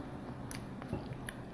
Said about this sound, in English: Whoops. We're both chewing.